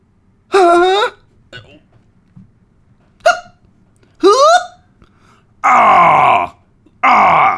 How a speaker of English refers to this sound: Wow, it stinks up here. Your stinky burps are making me almost puke over here. All those burps are making me want to frickin' hurl over here.